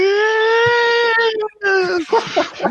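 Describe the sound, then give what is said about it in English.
A voice imitates a police siren with a loud, sustained wailing tone held for over a second, then a second rising wail breaks into choppy vocal bursts. “There's not a police siren in this world, so no one knows what you're doing.”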